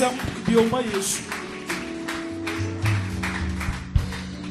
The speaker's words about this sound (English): Give Jesus a mighty hand clap.